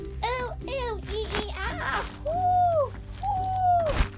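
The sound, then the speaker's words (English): A person's voice imitates owl hoots: a few short vocal sounds, then two long, drawn-out hoots in a row, fairly loud, over a low steady background hum. “Well, I was kind of making owl noises, but I guess the general idea.”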